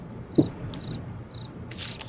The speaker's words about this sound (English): And, you know, attempted to make it look like all the other candidates just sat there in silence. They played crickets in the background.